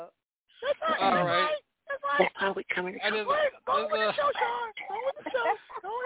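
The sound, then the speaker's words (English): A voice imitates cackling hens, letting out choppy bursts of squawky clucking that repeat for several seconds, slightly tinny, like it's coming through a phone line. “That's all like cackling hens. Cackling hens.”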